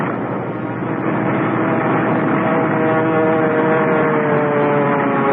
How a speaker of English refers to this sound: I remember the plane landing and then shearing sideways before I had time to cut the engines. I could feel the want to nose flip and was fighting desperately to keep my control.